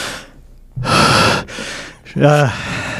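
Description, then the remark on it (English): Loud, close breaths blown straight into a microphone: a long heavy exhale, a pause, then another forceful breath ending in a gaspy, voiced rasp. Several rough airy bursts in about three seconds. “We know you breathe on the mics, motherfucker.”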